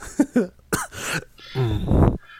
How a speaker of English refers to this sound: Here we go. He's the coughs we'll have to allow.